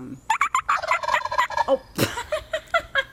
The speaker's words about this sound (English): If we can just get our producer to put in turkey sounds of turkeys gobbling, I just think it would be fun to hear, you know?